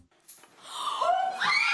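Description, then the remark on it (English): A short, strained scream rises in pitch and turns breathy and raspy near the end, fairly loud, lasting under two seconds with no talking around it. “Oh yeah, bitches scream.”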